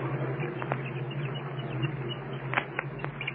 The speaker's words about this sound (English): You can hear them chirping anyway inside of the egg. There's the thump now. I'm sure you can hear the chicken plainly pounding on the interior of his shell. There's plenty of chatter, too.